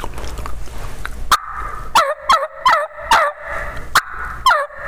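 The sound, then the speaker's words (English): A turkey call sounds a slow series of about seven coarse, raspy jake yelps, evenly paced and fairly loud, played by dropping all the pressure off the call and slowing the rhythm slightly, following a brief stretch of low background noise. “Well, I'm going to Jake yelp at him.”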